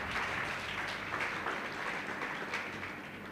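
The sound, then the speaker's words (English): An audience claps their hands for Jesus in a dense, steady wash of applause, many overlapping claps forming a bright, continuous texture with no voices standing out. “Clap your hands for Jesus again.”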